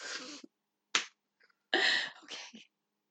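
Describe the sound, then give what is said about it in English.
Someone sneezes: a sharp, sudden burst of breathy noise, set among a few other short, explosive bursts of breath with pauses between them. “Okay, you got me back because I went into like mid laugh, and then I thought you were laughing, and you sneezed.”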